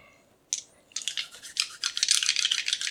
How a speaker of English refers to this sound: Ooh, listen to that dice ASMR. We're getting ready to roll right now.